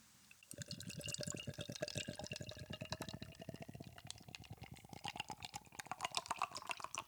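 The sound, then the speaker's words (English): Beer is poured steadily from a freshly opened can into a glass, a continuous fizzy, gurgling splash lasting several seconds, its pitch creeping upward as the glass fills. No one speaks. “And now the pouring into the vessel.”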